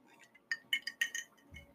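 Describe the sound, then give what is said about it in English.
Large ice cubes clink against a glass in a quick cluster of five or six bright taps, each a sharp ringing tick, followed by a soft low thud at the end. “Those are really large ice cubes.”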